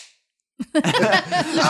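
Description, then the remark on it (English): A single sharp slap of a person's hand against their own body cracks out after a brief silence, immediately followed by a loud, drawn-out vocal reaction from that person. “You hit yourself too hard.”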